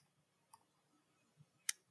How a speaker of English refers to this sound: With my 4 dice. God damn, you're rolling real well. There is a 6 in there.